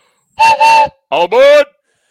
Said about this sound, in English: Brand new season of getting your eardrums blown out by the choo-choo train whistle. Getting scared in traffic when you hear it and crashing on the freeway.